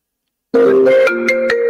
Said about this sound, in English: This is Kate Meany's phone again going off.